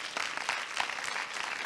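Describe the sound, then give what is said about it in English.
An audience claps together in a dense, continuous patter of many hands, steady and fairly soft throughout, with no voices standing out above it. “Come on, clap your hands, all ye people.”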